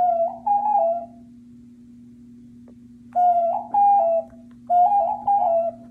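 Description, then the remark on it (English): A male pigeon coos in soft, hollow, ocarina-like phrases, three bursts of rolling notes separated by pauses, over a steady low background hum. “Someone in the comment section on Great Lakes Pigeon Rescue's post about him said that they sound like ocarinas”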